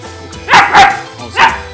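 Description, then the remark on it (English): A dog named JC barks three times, two quick, loud woofs followed by a third after a short pause, with a faint low hum underneath and no talking. “JC wants to be heard on the podcast, not like the kitties.”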